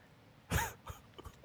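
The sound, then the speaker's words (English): One loud, harsh cough bursts out, trailed by a few smaller, fainter throaty sounds over the next second, with no talking. “Jesus Christ, that's your cough?”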